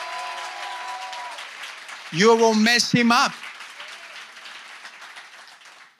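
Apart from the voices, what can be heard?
audience clapping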